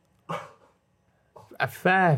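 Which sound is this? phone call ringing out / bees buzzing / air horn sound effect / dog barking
dog barking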